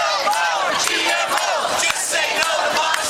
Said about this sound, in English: Shouting chants of no more GMO. Tens of thousands of protesters marched on Saturday in hundreds of cities in 52 countries around the world against biotech seed giant Monsanto and Monsanto's genetically modified seeds, or GMOs, in the food supply.